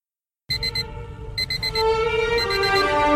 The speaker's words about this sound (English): and it appropriately starts off with an alarm clock